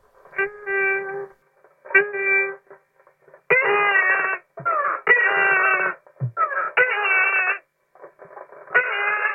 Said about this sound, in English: You made some music with a whale that was in a captivity, and it seemed to be imitating the sound that you were making. Oh, the beluga whale, yeah.